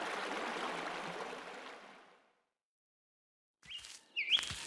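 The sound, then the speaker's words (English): A creek's steady, hissing rush of flowing water fills the first two seconds, then fades into silence before a few sharp bird chirps ring out near the end. “Water in the creek looks like it's settling down.”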